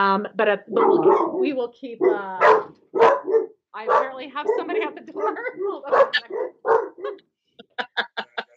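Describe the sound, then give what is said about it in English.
The speaker's dogs bark repeatedly at nothing, loud, mixed in with a person talking, then a quick run of sharp barks on their own near the end. “My dogs are barking at nothing.”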